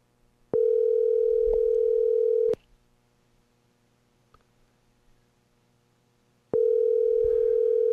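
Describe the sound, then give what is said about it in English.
An outgoing phone call's ringback tone: a steady electronic burr sounds for about two seconds, falls silent for roughly four, then starts again. Fairly loud, with no voices. “Here, let me see if I can get the phone up on the air.”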